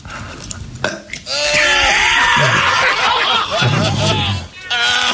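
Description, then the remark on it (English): A man's long, loud, strained dry-heave burp drags on for several seconds in a rough, gurgling croak that wavers in pitch, with a brief snicker of laughter around it. “Everybody be quiet and listen again to his first dry heave burp.”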